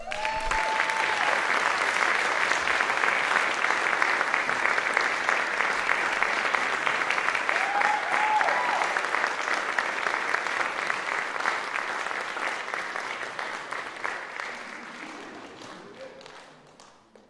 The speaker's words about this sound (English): we're going to give you a round of applause.